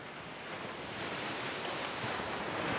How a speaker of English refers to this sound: You see sets of waves coming in and crashing on one another. You see them closing in on each other and others closing out to either side. You watch as they crash and the water flows up onto the beach.